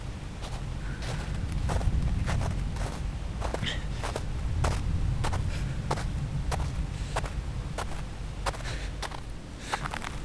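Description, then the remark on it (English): A long run of steady footsteps on a fairly long walk, each a crisp, sharp tread landing about twice a second, over a constant low rumble of background noise. No one speaks. “Now, this walk is fairly long.”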